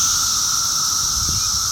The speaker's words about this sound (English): There are probably 1,000 plus cicadas in this tree. It looks like a beehive that somebody shot a bottle rocket at.